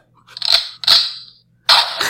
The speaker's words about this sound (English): Bad timing. Bad insensitive gunshot warning. I didn't look at the sound machine first.